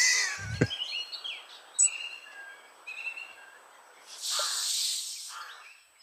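Several birds chirp and twitter in short, bright calls, followed by a loud hissing burst near the end. There is a low thump at the start and no talking.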